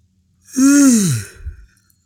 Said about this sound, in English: I just tested it. You didn't yawn. Just then. I yawned, you didn't yawn.